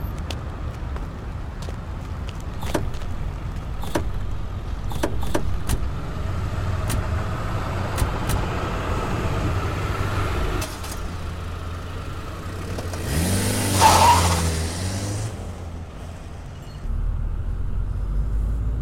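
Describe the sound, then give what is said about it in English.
Several sharp thuds of car doors shutting as people get into the car over a steady idling engine, followed by the engine revving up loudly and pulling away, with no one speaking. “All right, everyone in the car. I will drive.”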